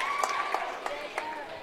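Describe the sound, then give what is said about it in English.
Fans at a basketball game clap in a steady, moderately loud wash of applause for a player being substituted, with a few sharper claps standing out and a voice speaking over it. “We'll get a round of applause from the fans here.”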